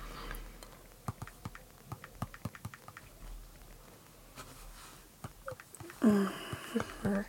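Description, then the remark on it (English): Rapid clicking of computer keys as several people type, a steady patter of irregular taps, with a brief burst of speech-like sound near the end. “God, we're all, like, just typing away instead of talking.”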